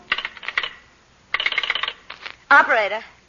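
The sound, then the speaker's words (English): Quick bursts of mechanical clicking and rattling, like a telephone being dialed, come in three short runs, followed by a voice speaking briefly. “Life and happiness wait upon its ring, and horror and loneliness, and sometimes even death.”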